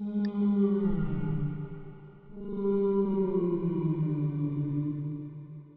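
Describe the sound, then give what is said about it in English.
A whale sings in long, low, sliding moans, two sustained calls that bend slowly in pitch with layered harmonics, steady and loud, with a brief higher chirp near the start. “What a magnificent sound of a whale singing its song.”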